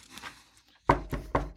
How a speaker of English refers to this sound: Before he enters, there is a knocking at the door.